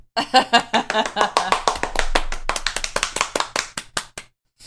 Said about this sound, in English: And everyone clapped.